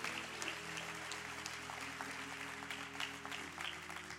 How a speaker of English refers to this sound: Let's give a round of applause to our music team